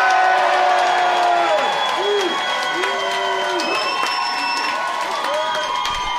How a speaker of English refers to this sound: Get them cheering voices on. Get them clapping hands together.